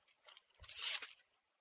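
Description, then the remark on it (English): Paper being cut: a few faint crisp rustles lead into one louder, crunchy, hissing slice lasting about half a second, then fading back to quiet. No one speaks. “Let me cut the paper.”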